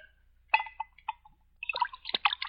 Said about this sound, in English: Sherry. Will you have a glass? Yes, you can pour me a glass of sherry. Well, I assure you, my friend, it's the very best.